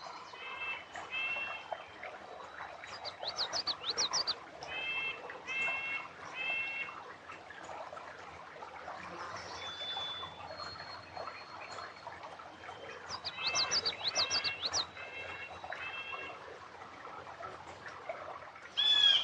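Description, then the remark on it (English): A busy outdoor chorus of birdsong by a beaver dam, several birds trilling and chirping over one another in repeated bursts, steady throughout, with no one talking. “Just listen to how much birdsong there is here, and that's partly because of this beaver dam.”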